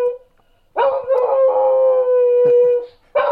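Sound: dog howling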